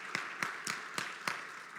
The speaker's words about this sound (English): Y'all must have known I won. I'm glad you clapped.